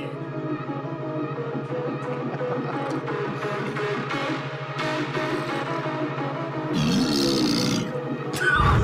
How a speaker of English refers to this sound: That was kind of a fart.